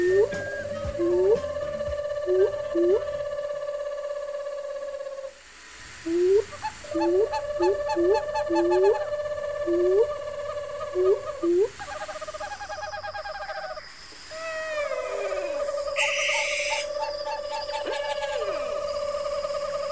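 Owl hoots come in a series of short, evenly spaced calls over a steady sustained tone, with a brief quiet gap partway through. No one speaks.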